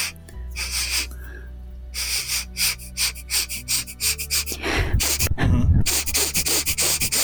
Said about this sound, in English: So let me see that arrow. Let me see that. And I sniff it. I'm sniffing it.